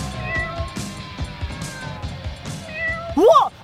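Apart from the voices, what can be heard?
cats meowing and caterwauling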